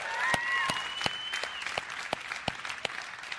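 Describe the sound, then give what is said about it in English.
Thin, scattered audience applause for a partner working in Malawi: a handful of sharp, uneven hand claps over a soft crowd murmur, with a faint wavering high tone in the first moments. “That's kind of a weak, you know, applause.”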